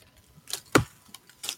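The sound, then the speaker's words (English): A single hard, sharp chop of an axe striking a tree, with a couple of fainter, crisp knocks before and after it. No voices are heard. “Chopping a tree is what it is.”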